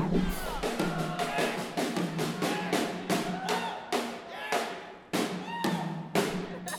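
Drums pounding out a loud, driving beat, with bright crashing hits landing roughly twice a second over a steady low thump, played alone with no talking.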